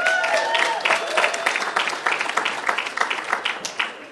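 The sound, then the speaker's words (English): An audience applauds steadily for about four seconds as the next speaker is introduced, many hands clapping in a dense, crackling patter with no voices over it. “Give her applause.”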